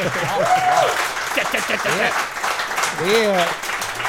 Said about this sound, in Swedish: Då vill man ju alltid höra att det är en applåd för att tro att det är publik där. Nu måste ni applådera.